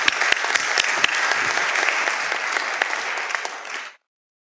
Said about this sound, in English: All right, give them a round of applause, folks, for being so brave.